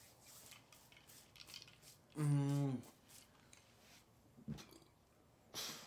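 A single loud, low-pitched burp lasting about half a second, standing out against faint background clatter, with a few soft clicks afterward and no talking.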